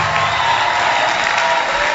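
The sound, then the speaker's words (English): A large group claps and cheers together for Jesus, a dense, steady wash of applause with scattered shouts that stays loud and unbroken from start to finish. “Come on, clap your hands together for Jesus.”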